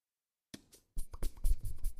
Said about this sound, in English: That was some very good hand farts. No, that was the actual farts. Nice! Let's see a hand fart.